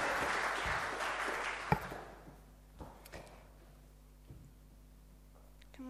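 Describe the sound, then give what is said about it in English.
Audience applause for a speaker at a presentation starts as a dense burst of clapping, then tapers off over a couple of seconds into a few scattered, isolated claps before quiet settles in. “Give Verity a round of applause as well.”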